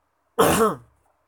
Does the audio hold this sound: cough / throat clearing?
yes